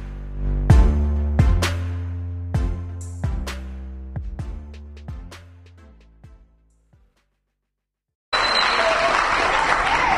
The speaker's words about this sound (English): Wow! Let's give a round of applause for the song leaders getting us ready to worship the Lord there with the song.